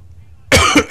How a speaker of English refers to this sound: You were just coughing. You did the first three words you said in a few minutes. Couldn't get nothing else out.